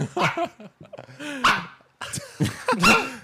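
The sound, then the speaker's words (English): A pug, a small flat-faced dog, lets out a string of snorty, huffing barks and grunts, with short pauses between bursts and no talking. “I think it's hilarious that they chose a pug. Like a French bulldog bark.”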